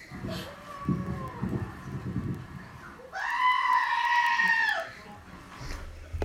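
A screaming goat sound effect: a loud, drawn-out goat scream blares for about two seconds, a harsh, quavering bleat with strong harmonics, preceded by a few seconds of low murmuring background noise.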